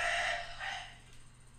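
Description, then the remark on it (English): A man screams at the top of his lungs while throwing up: a loud, strained, retching scream that lasts about a second, with a second rasping surge before it fades into faint background noise. “This guy is screaming at the top of his lungs as he throws up.”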